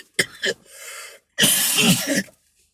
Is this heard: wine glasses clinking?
no